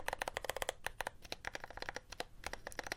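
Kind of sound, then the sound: household object, mechanical keyboard typing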